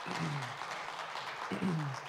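A church crowd claps steadily for about two seconds for a woman who read scripture, a dense patter of many hands, with a couple of voices calling out over the applause.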